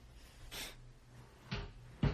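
A drawer under a bed gets accidentally bumped while someone walks, giving three short, muffled thuds and scrapes spaced about a second apart over a low steady hum, with no talking.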